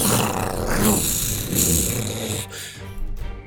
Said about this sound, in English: Illyria lunges forward and gets you in the ankle this time, gets you by the leg, Igor, and once again just rips and tears, growling all the time.